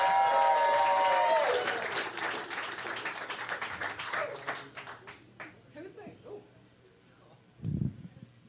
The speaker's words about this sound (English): Start clapping right now